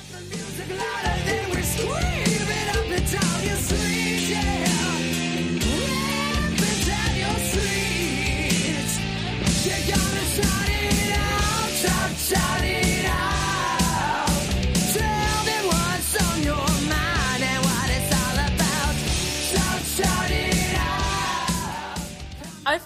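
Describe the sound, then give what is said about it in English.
A heavy metal song plays loud and dense for the whole stretch, a wall of driving instruments with strained, shouting vocals riding on top and no talking over it. “Yeah, this is one of those metal bands I just don't know anything about.”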